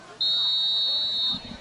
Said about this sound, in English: The whistle has been blown, and the kick is underway.